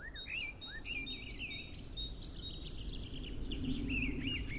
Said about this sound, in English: Once the dawn chorus really gets going later in the spring, blackbirds are generally the earliest risers and the first to start singing each morning. Males are, of course, black with a yellow bill, and females are brown.